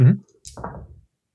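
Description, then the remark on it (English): A short clatter of two dice tumbling across a tabletop, lasting about half a second, moderately loud, right after a brief fragment of a voice. “2 dice for that.”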